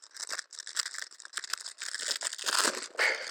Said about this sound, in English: This is a packet of balloons. Just going to open the bag and get into it.